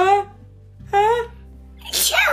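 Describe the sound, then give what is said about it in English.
While reading a story aloud, a voice acts out a bear's enormous sneeze: two drawn-out, rising 'ah' breaths followed by a loud, breathy, explosive 'choo' burst, theatrical, with no other talking. “The bear, tickled by the mouse's whiskers, gave an enormous sneeze.”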